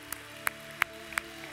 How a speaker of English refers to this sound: Can we raise one more hand clap of praise to our God this morning? Amen.